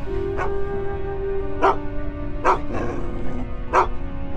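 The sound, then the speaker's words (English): A dog barks repeatedly in sharp, loud bursts, about four or five barks spaced irregularly over a steady low hum. “The dog just started just barking and just going crazy and just snarling.”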